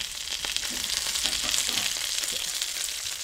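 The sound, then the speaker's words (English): Steady sizzling of rendered chicken skin fat in a hot pan, with no water left, just oil: a dense crackling hiss with small pops scattered throughout, continuous for the whole stretch with no voices. “So the sound of the sizzle is completely different. Like the quality is because now it's just fat.”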